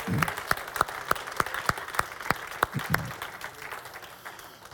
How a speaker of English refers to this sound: Now would you just clap and thank him?